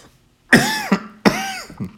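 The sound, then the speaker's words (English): Two harsh, loud coughs about three-quarters of a second apart, each ending in a short rasping catch, from choking on water that went down the wrong pipe. No talking. “Water went down the wrong pipe.”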